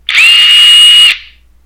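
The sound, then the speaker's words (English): A power drill whirs in one loud, steady burst lasting about a second, its high pitch holding constant before cutting off and trailing away. No voices are present. “What was that, a drill?”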